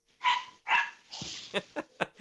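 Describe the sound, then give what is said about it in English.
A small dog yips and barks in quick, sharp bursts, two louder barks followed by a cluster of shorter high yips, clear with no talking. “Yippee dogs included.”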